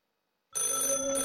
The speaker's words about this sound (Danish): Telefonen ringer. Jeg orker ikke at rejse mig. Den ringer igen. Og en gang til.